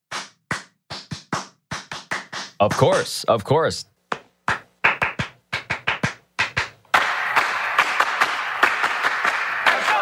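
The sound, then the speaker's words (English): Sharp hand claps in a syncopated rhythmic pattern, the well-known hand-clap pattern from a 1962 song, bursts of quick claps with pauses, followed by a dense stretch of music with continuous clapping; a brief spoken phrase cuts in midway. “do you remember this clap?”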